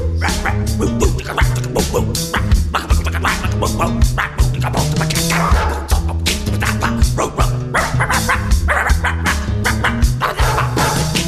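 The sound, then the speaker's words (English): Dog barks and yips mixed into a loud, busy music track, sounding repeatedly over a steady beat and sustained instrumental tones throughout. “Stop that, doggy dog, who let you in the door?”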